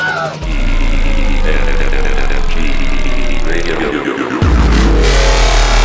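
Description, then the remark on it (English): A loud traffic helicopter engine drones steadily, its whining pitch wavering, then drops into a heavier low rumble near the end as the helicopter goes down. “and the traffic copter. Yeah, whoa! Going down!”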